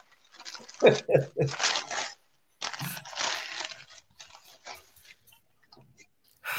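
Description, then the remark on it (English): Princess gift wrapping paper on a Christmas present is ripped and crinkled in a few quick bursts as it is opened, then a longer stretch of tearing and rustling, followed by fainter scattered crackles. “Picked out the princess wrapping paper just for you. Can I open it?”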